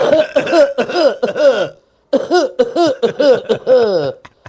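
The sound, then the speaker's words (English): A voice imitates a string of theatrical, exaggerated coughs, the kind put on by people when someone lights a cigarette, loud, in two rapid bursts of several hacks each separated by a short pause, with a strained, almost laughing tone. “As soon as you light a cigarette, you get this Abbey act of a cough.”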